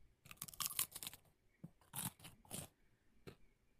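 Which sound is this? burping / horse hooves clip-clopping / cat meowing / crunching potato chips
crunching potato chips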